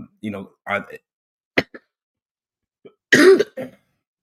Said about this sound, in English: excuse my cough.